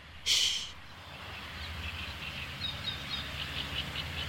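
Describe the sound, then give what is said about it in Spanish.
Faint birds chirp in a series of small high calls over a steady outdoor hum, after a brief burst of rushing noise near the start, heard from a bird observatory at the Albufera; some birds are drinking, others eating, others flying. No one speaks. “Ahora Julia ha entrado en un observatorio de aves y está observando algunos pájaros.”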